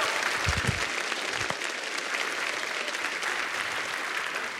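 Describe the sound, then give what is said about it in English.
A church audience claps during a sermon to give glory to God, a dense, sustained wash of many hands with no pauses, holding an even loudness throughout and a few low thumps near the start. “I always tell you, don't clap for me, clap for him.”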